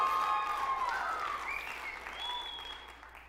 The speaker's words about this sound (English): Man, that was a big cheer.